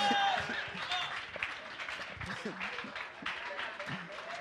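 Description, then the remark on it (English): An audience claps steadily for several seconds, a dense, even patter of many hands, with voices and crowd murmur mixed in beneath the applause. “Listen, if you are clapping to deceive me that you like it, you better do it well, because what is about to come, you may not like it.”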